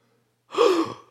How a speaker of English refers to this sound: Gasp.